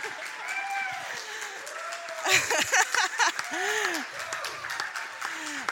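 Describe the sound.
An audience breaks into a brief burst of clapping and cheering in the middle, with excited voices talking and calling out before and after it.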